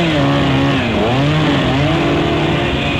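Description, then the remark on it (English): A voice mimics an electric buzzsaw with a loud, continuous, rasping whine, its pitch dipping briefly and then climbing back up, sustained for about three seconds without any words. “Do that impression of an electric buzzsaw again.”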